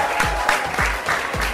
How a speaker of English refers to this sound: The girls you can hear cheering are the top teams from the Girls Got Game Born Ready Basketball Camp, who have been training even during the pandemic through virtual classes